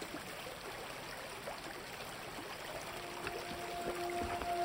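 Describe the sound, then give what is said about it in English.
Steady flowing stream water burbles and trickles continuously, a broad, even wash of sound that swells slightly toward the end, with a faint tonal hum appearing partway through. No voices. “We stayed near the stream for a couple of hours.”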